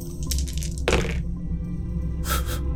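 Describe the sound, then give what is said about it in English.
Three dice clatter and rattle in a few quick bursts as they are rolled, with one sharp knock in the middle, then a last rattle a moment later, over a low steady hum. “I rolled 3 4s.”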